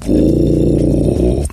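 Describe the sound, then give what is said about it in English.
A voice imitates a sea creature with a sustained, low, rumbling growl, loud and steady for over a second before cutting off, sounding like a guttural roar. “Now I'm going to make noises that only sea creatures can hear.”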